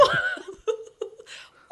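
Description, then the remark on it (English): A person imitates a turkey's gobble: a loud, warbling burst followed by several quicker, throaty gobbling pulses, with no other talk. “It's quite a good turkey impression, isn't it?”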